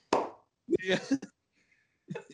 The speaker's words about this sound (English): I don't know why I clapped instead of stabbing my face. Probably because I don't want to stab my face.